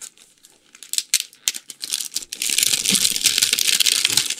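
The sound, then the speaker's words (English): Red, gold-coloured wrapping paper around a huge rectangular gift crinkles in sharp, irregular crackles, then tears open into a steady, loud rustling rip for the last couple of seconds. No voices are heard. “Okay, it's gold colored red paper.”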